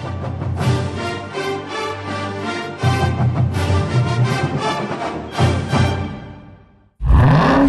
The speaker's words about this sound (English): What do you hear? Most people just hear an engine. We hear a 6.2-liter Hemi V8 with a supercharger that accelerates so fast, it'll suck the air out of your lungs and knock you back in your seat like you're an astronaut in a rocket ship